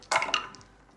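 A large handful of dice, rolled from the other side of the room during a tabletop role-playing game, clatter across a hard surface in a sharp rattling burst, followed by a second smaller clatter and a few faint trailing clicks as they settle. No voices.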